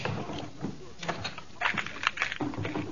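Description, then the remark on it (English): A drawer slides open, followed by rummaging as a small tool kit is searched for in a top drawer: scattered knocks, scrapes and clatters of objects being shifted around inside, with a few brief faint voice sounds in between. “I've got a little tool kit in that top drawer over there. Find it for me.”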